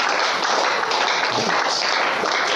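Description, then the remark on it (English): An audience claps their hands in a steady, dense wash of overlapping claps that holds at an even, fairly loud level for the whole few seconds, with no voices standing out. “If you are clapping, clap your hands well.”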